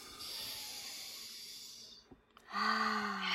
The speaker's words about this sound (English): Like, take a breath right now. Seriously, take a breath in your belly and let it expand. Because yeah, we stop breathing when this conversation comes up.